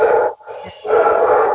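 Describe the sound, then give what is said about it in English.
A dog named Papu barks loudly at other dogs it has spotted outside, two drawn-out barks split by a short pause, with no one talking over them. “He's just spotted other dogs outside.”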